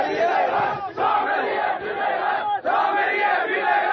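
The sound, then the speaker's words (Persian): A large crowd of protesters blocking Friday prayers and preventing them from being held shouts loudly and continuously, many voices chanting and yelling together in rough bursts, with brief dips between surges of noise. “جلوی نماز جمعه رو گرفتن و نمیذارن که نماز جمعه برگزار بشه. تعدادشون هم کم نیست.”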